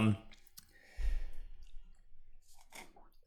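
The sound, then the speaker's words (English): A gurgling slurp through a straw from a Slurpee frozen drink in a Big Gulp cup, with wet sucking and crackly bubbling that swells for about a second, followed by softer clicks and a breathy exhale. “I guess you're celebrating the feast day with your big gulp. It's actually a Slurpee.”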